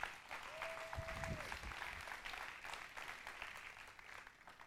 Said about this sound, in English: Y'all give Derek a hand clap this morning.